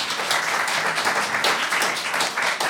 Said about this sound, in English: Round of applause for both of our teams.